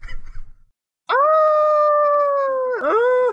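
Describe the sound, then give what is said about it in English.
After a brief low rumble, a voice imitates a disdainful shriek with one long, loud, mournful wail that holds a steady pitch like a howl, then wavers and dips before continuing. “That's it. That's a disdainful shriek.”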